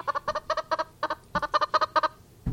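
A chicken clucks loudly, a quick run of about a dozen short, bright clucks in uneven bursts, with no one talking.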